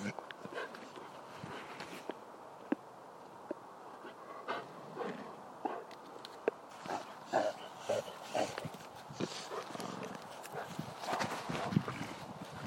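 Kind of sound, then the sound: animal, horse hooves clip-clopping nearby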